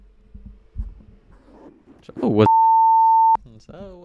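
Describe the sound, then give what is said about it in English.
A loud, steady censor bleep, one flat tone under a second long, abruptly replaces part of a man's speech. He talks right before it and resumes immediately after. “Sorry, I apologize for the beeps, but certain things, you know, we want to be respectful.”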